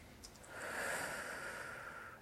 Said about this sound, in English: For you, I'd like you to start, and ideally for the rest of this presentation, breathe incredibly deeply. So let's all do it together.